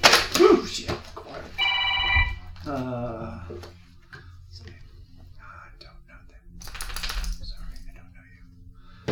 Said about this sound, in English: Telephone. Where's the phone?